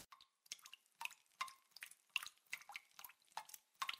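Clear water drips plink one after another in a quick, slightly uneven rhythm, about a dozen drops over a few seconds, each with a short bright ring and no voices; in a narrated story, something dripping onto the forehead of Stella, who lies on a kitchen floor.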